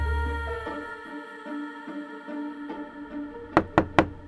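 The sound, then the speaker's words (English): Three quick, firm knocks on a door land close together near the end, following a stretch of steady tonal background music with no voices. “I can't open the door right now”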